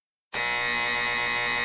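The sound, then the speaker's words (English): A loud, harsh electronic buzzer sounds abruptly and holds steady for over a second, a single sustained nasal blare as a game show contestant buzzes in to answer a question. “you are quickest on the buzzer.”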